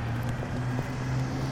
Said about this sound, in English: Oh no! That's my bus! Oh! Wait!